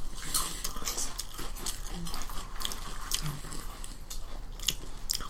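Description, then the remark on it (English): Crunchy chewing of a salty seaweed snack, a steady run of crisp, crackling bites and mouth sounds repeating over several seconds with no talking. “Crunchy. Again, no initial taste, but an aftertaste, and that is a seaweed aftertaste.”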